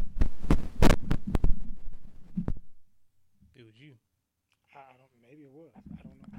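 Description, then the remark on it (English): Loud crackling static with sharp pops over a low electrical hum, which started after a microphone was adjusted, fills the first few seconds, then cuts out, leaving brief voiced sounds against near silence. “Am I the only one here static? I hear it, too.”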